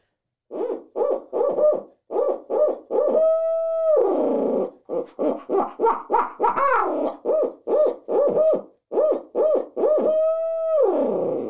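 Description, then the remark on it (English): A loud human imitation of an owl hooting, given in the morning while turkey hunting to make turkeys gobble: a rhythmic run of short hoots broken by two long, drawn-out calls that slide downward at the end, with no talking. “I guess the first thing I'm going to do is, if they're not gobbling on their own, is I'm going to give an owl hoot, right?”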